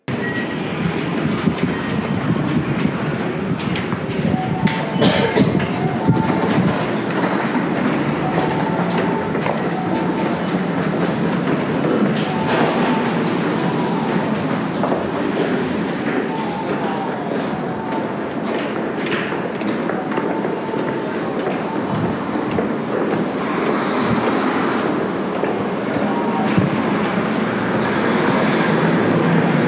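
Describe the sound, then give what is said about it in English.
Steady, loud rumble of a subway train in motion during a Friday commute, heard from inside the car, with rattling and occasional clacks and faint metallic squeals over half a minute; no talking. “Looks like I'll make it into the train, but it's kind of rude to talk in the train, especially on the phone, so this is where I'm going to have to cut it short.”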